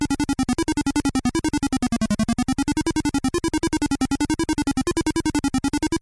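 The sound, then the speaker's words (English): Buzzy, square-wave computer music from an old Atari demo program showing a beehive and a bee flying to the notes: a bright, wobbling melody built from rapid staccato pulses, played loudly and continuously with no voices, the song repeating when it ends. “An energetic little bee flies about to the notes of the music. When the song ends, it repeats.”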